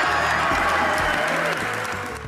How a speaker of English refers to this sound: and this kind of shouting is what they get. That's not worthy of this parliament. It's not worthy of the people they serve.